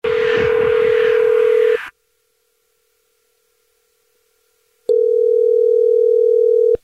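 A phone number being dialed for a call on the Jubal Show: a steady, mid-pitched telephone tone sounds for about two seconds over a rough burst of noise, goes silent for several seconds, then returns just as loud for another two.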